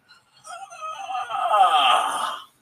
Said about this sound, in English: So I just kind of lean my back, and I yawn, and arch my back, and I just kind of stare at the sky. I'm yawning again.